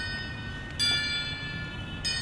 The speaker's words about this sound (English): Impatienta looked behind her to see an enormous bell being rung by a gilded gold man. He methodically moved back and forth and clanged the bell 3 times.